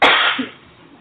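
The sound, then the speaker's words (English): A single harsh throat-clearing burst after a sip of beer, loud at first and then trailing off into a softer rasp, with no talking around it. “The beer sip. Yes, the beer sip. Clear my throat.”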